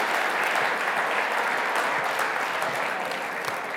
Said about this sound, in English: Can we give our volunteers a round of applause?